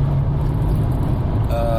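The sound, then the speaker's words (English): Steady low engine drone and road rumble from inside a car driving along a winding road, loud and continuous, with a faint tonal whine creeping in near the end. “It's just a joy to drive this thing along this road.”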